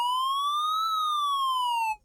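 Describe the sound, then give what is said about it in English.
A loud electronic alarm siren sounds alone, a single steady tone sliding gently up and then back down in pitch over about two seconds before cutting off abruptly. “Hey, sound the alarm.”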